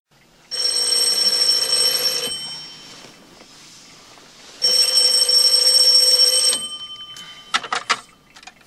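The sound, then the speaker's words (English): A telephone rings twice for a call to Budwong, each ring a loud, bright electronic trill lasting about two seconds with a pause between, followed by a few sharp clicks like a handset being lifted. “Bag uses a fake voice and impersonates renowned scientist Carl Sagan in a phone call to Budwong.”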